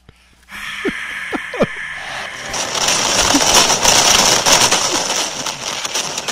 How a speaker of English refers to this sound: That's our fireworks.